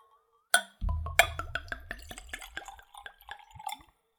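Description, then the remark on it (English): Liqueur glugs from an opaque bottle into a clean Glencairn whiskey nosing glass, opening with a light clink and then a rapid series of rhythmic gurgling pulses that slow and fade as the pour ends. Clear, with no talking. “So let's give it a pour.”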